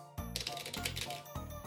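A deck of cards being shuffled, a quick flurry of crisp papery clicks lasting about a second, with a low steady hum underneath.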